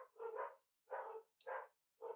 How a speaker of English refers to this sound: Can you hear the menagerie barking? Oh, no. Well, can you hear it? I couldn't until it was just silent for a second.